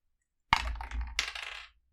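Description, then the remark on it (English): Dice rolled for initiative clatter across a hard table in a sudden rattling burst, then skitter again in a second bright tumble before settling into silence, landing on a 1. No voices are heard. “I rolled a 1.”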